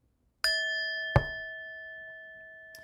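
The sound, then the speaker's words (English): A bell is struck twice in close succession, each hit ringing out with a bright, sustained metallic tone that slowly fades, and a third strike begins just as the sound ends. “I didn't like the sound of that bell, so we're going to give it another hit.”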